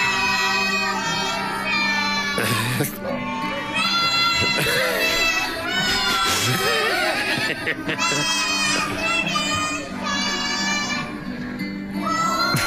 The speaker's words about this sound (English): one child decided to sing very loudly, so much so that they screamed all the way through Silent Night. Just listen to how loud this one kid is. God. Well, they're all sort of screaming. Yeah. And there's one lad in particular.